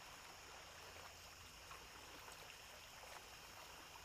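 Water flows steadily the whole time, a continuous bright rushing hiss with small flickering splashes and no voices or pauses.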